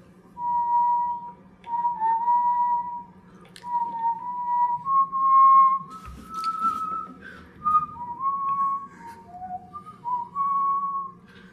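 A person whistles a slow, sweeping melody up close, the sustained notes rising and falling in long phrases with brief breaths between them, alone without talk over a faint room hum.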